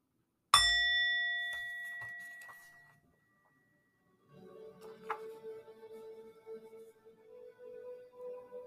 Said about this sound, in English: In a moment, I'll ring the bell.